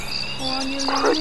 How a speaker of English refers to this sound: Crickets. Crickets.